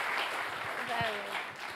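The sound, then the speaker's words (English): An audience applauds in a steady, dense wash of many hands clapping for under two seconds, with a brief vocal whoop or cheer rising out of the noise midway. “Clap it up, clap it up.”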